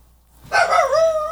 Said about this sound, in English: Who are you? Yeah, I need you to know that I am here, and this is my house and my family. Yep. Our dogs are the same. And that was the bark of, I don't know who you are, who are you?